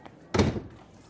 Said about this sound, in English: Pierre pushed open the door to the archives and clicked it shut behind them